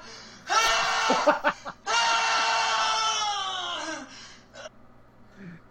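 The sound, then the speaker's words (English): A person belts out a mock anguished Wolverine scream: a short strained cry, a few choppy gasps, then a long, loud, sustained howl that trails off into quiet. “Okay, and that's our Wolverine Scream outro.”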